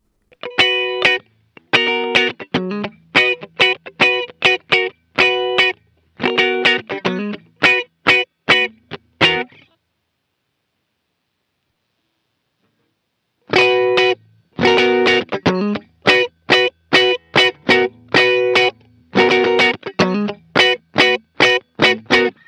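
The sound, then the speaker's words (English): Electric guitar played through a Piper Drive overdrive pedal used as a mild clean boost, strumming short rhythmic chord stabs in two loud passages separated by a few seconds of silence. No voices. “It can be a clean boost or an always-on pedal.”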